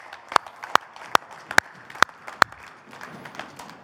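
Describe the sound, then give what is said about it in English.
An audience applauds its worship team, with a steady run of six sharp, evenly spaced claps standing out over softer scattered clapping that continues on its own after they stop. “team a round of applause just to show our appreciation.”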